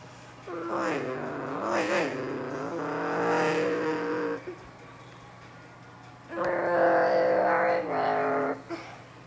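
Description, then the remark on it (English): Race car engines of about 19 cars whine and rev upward in two loud bursts as they accelerate after a restart, the pitch climbing and wavering, with a brief lull between the surges. “19 cars probably gonna merge. Or this is kind of a big setback restart, speed followed by HDS.”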